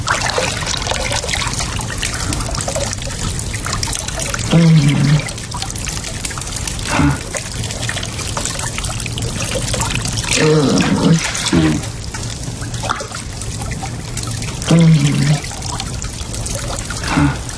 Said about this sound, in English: So the scene is Jamie is pouring the water over Claire. Okay, and this is what happens.